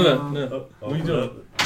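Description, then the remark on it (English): People talk, then near the end a sharp, short clatter breaks in, like the handle of a locked door being tried and the door opening. “The door's locked.”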